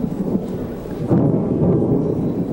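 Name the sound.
thunder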